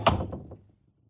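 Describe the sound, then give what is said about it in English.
A wardrobe door swings open with a sharp wooden thunk, followed by a couple of softer knocks as it settles, then silence. No one speaks. “So let's grab her love handles, open my wardrobe doors and find out what's inside.”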